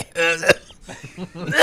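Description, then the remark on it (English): A voiced, throaty sound ends in a sharp cough, followed by softer mumbled vocal noises and then a second harsh cough burst. “It's the first time the cough actually works.”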